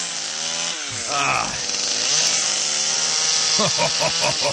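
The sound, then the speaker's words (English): A chainsaw runs loud for several seconds as a man carves a big piece of wood with it, its engine whining up and down in pitch as it bites into the wood, ending in a few quick revving bursts. “All right, this guy's got a big old piece of wood there. He's got a chainsaw, and oh, yeah.”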